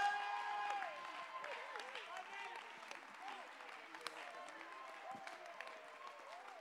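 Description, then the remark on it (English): A church audience claps together in a steady, dense wash of applause lasting several seconds while praising God, with raised crowd voices and cheering mixed in throughout. “Clap your hands and lift your voice and magnify God.”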